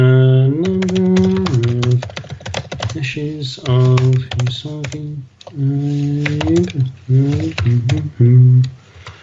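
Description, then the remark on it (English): Rapid, irregular clicks of fingers typing on a computer keyboard run throughout while someone hums a wavering tune over the keystrokes. “Doing some typing.”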